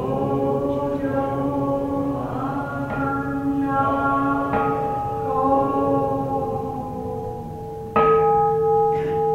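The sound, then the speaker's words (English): A large Buddhist temple bell (kansho) in the Chicago area is struck several times at uneven intervals, each deep, resonant clang ringing on and overlapping the next, with a louder strike near the end. No voices. “the idea of automating the Ding Gongs or the Kansho is ridiculous”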